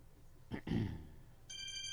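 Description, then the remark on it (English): A mobile phone starts ringing with a bright, steady electronic tone near the end, following a brief low thump and rustle; the ring is fairly loud, with no talking. “I'm sorry, my phone is so loud today.”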